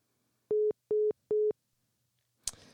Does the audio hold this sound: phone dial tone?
yes